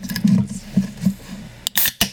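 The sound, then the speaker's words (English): A can of Arizona tea cracked open: low rustling handling, then a sharp metallic snap followed by a brief fizzing hiss and a second quick burst of escaping gas. “Crack it on the line. We're cracking it.”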